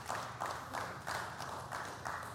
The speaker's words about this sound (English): Oh, you can clap. That's all right.